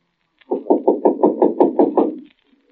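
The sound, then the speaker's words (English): A neighbor knocks on a door in a rapid run of about eight or nine firm knocks, evenly spaced and fairly loud, lasting under two seconds, then stopping. No voices are heard. “Somebody at the door.”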